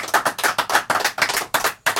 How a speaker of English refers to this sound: Since we won't have applause at the end, how about one more round of applause for these wonderful two musicians? Thank you so much.